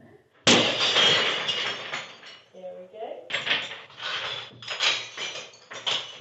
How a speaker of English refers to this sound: And believe it or not, it took 7 attempts with a sledgehammer to get through a pane of the famously breakable material glass. But eventually.